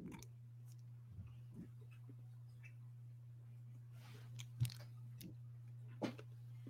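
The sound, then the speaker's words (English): Crunchy chocolate candy being chewed, with a few scattered crisp crunches, two sharper ones near the end, over a quiet, steady low hum. No one speaks. “Okay, so it looks like a Milky Way. It looks like a piece of poop. Yes. Okay. Ooh, crunchy.”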